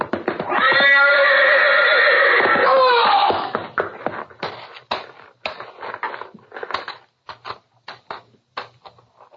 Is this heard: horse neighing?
yes